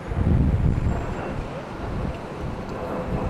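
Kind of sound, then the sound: vehicle, airplane flying overhead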